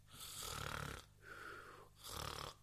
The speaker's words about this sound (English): and if you're the guy behind me in the cinema who was snoring.